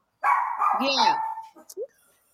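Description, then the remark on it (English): Dogs bark: one long, wavering, yowling bark trails into a few quick, short yips, with no talking. “the dogs agrees. Are going to go a little crazy for a minute because that's their job.”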